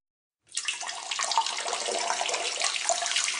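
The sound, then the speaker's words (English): After a brief silence, a person urinates in a bathroom, a steady stream splashing loudly and continuously into toilet bowl water, an even hissing pour with no voices. “Since no one else is going to do it, I'm going to let this fucking rip into the toilet water. And I did. And it sounded something like this.”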